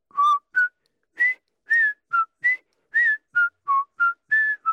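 A person whistles a song melody alone, a string of clear, fairly loud notes at shifting pitches in a steady, song-like rhythm with brief gaps between phrases.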